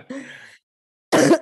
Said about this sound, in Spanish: Perdona, que está tosiendo.